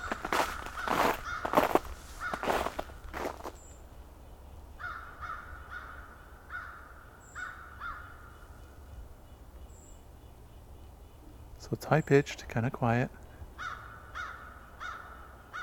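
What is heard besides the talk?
crows cawing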